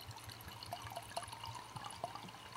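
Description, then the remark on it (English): Wine pours steadily into a glass, a continuous burbling trickle with small glugs and splashes, fairly quiet, with no voices. “Was that a decent pour?”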